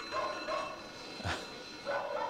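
guard dogs barking

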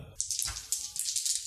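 gulping water

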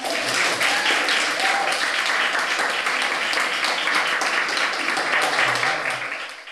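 audience round of applause

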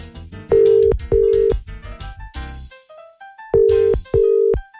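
outgoing phone call ringing

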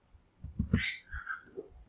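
cats meowing

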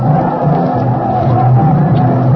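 crowd yelling

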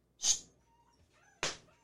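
dog making noises

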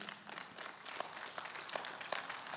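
soft golf clap

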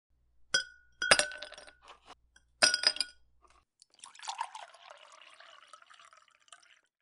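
glasses clinking

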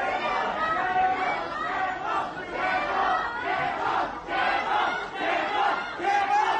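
protesting crowd shouting

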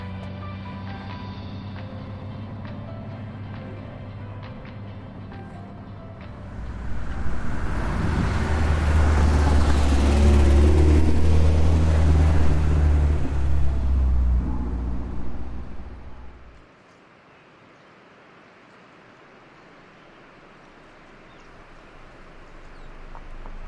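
car driving

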